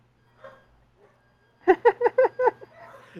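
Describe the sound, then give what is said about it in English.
A quick run of five sharp dog barks in steady rhythm, after a couple of faint murmurs, with a low steady hum underneath throughout. “Those aren't my dogs.”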